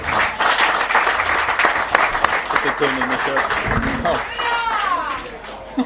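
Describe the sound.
A live audience breaks into applause because nobody present supports Manchester City, dense clapping for several seconds, with a few cheers and voices mixed in before it tapers off near the end.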